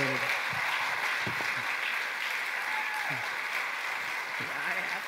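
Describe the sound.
A crowd claps steadily and densely for about five seconds, a continuous wash of applause at an even level with faint voices mixed underneath.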